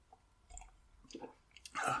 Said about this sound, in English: Now, it has a nice nose to it. A little bit of floral, a little bit of brown sugar. It's a nice amber color. Let's take a sip and give it a try.